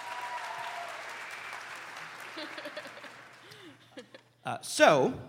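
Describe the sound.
An audience applauds a contestant who has come up on stage at a live show, with dense, steady clapping that gradually thins out, and then a voice speaks up loudly as the applause fades.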